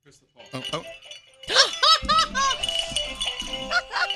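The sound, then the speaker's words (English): A tinny electronic Christmas melody plays from a push-button mechanical furry dancing toy dog with a little bell that dances in circles: bright warbling notes rising and falling over a steady mechanical rattle and light jingling, with some brief voice-like sounds at the start. “It says, try me. I play Deck the Halls, Jingle Bells, Wish You a Merry Christmas.”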